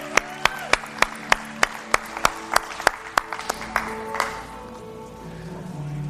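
A church audience gives a hand clap of praise together in a steady, even rhythm, roughly a dozen sharp claps over four seconds, with sustained tones lingering underneath before the clapping fades out.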